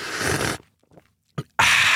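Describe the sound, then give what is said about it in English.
A person imitates loud coffee sipping: two long, noisy, hissing slurps separated by a pause with a small gulp-like click between them. No words are spoken. “I used to work with this woman, and she sat behind me, and every single sip of her coffee, she would go like this.”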